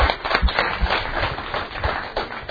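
A crowd applauds steadily, many hands clapping at once into a dense, crackling wash that holds fairly even in loudness for a couple of seconds, with no voices over it.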